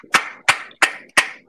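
Four sharp hand claps in a steady, even rhythm, each a crisp bright smack with a short ringing tail, fairly loud and with no voices over them.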